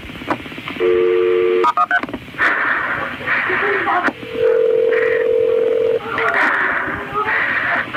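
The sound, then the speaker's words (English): A short burst of touch-tone dialing beeps and clicks on a phone line as an emergency call is transferred to the ambulance service, followed by a longer steady tone, while a muffled, band-limited voice speaks over hissy line noise. “Let me connect to the ambulance service.”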